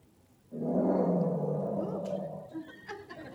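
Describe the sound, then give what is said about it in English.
A single deep lion roar bursts in loudly, holding a rough, rumbling growl for about two seconds before trailing off into quieter grumbles. “I thought that'd be more effective than me going rawr.”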